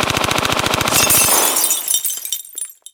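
A rapid burst of about a dozen and a half gunshots fired through a stained glass window, followed by the window's loud shattering glass crashing and tinkling away into scattered falling shards.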